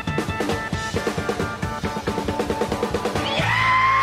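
Music remix built from a man's scream: a punchy, steady beat under layered tones, closing on a long, loud sustained wail.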